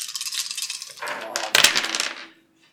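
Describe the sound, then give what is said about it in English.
Five dice, rolled for a pushed observation roll, clatter and tumble across a hard tabletop, fairly loud, with a burst of sharp rattling that settles into silence after about two seconds. “5 dice and 3 points.”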